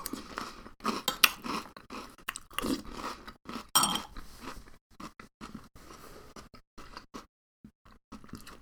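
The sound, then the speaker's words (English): Someone chews thick, crunchy cinnamon cereal with milk, a steady run of wet, crackling bites and munches in an uneven rhythm, pausing briefly near the end, with no talking. “you enjoy the sounds of people slurping cereal into their big dumb mouths”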